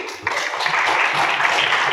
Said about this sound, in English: Thank you. It's two services in a row. She's got applause. Quite right, too.